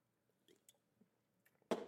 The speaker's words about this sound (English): Another sip.